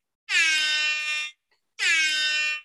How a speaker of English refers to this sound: Oh, shit, I had the air horn pulled up.